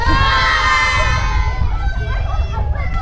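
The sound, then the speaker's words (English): A parade crowd cheers loudly and steadily on request for about three seconds at a parade that includes Clonmel Commercials. It is a dense wash of raised, high-pitched voices and shouts, many sounding like children, with no pauses. “Give us a cheer.”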